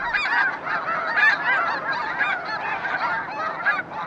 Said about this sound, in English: Mark has more to tell about the snow geese of the Bosque del Apache Reserve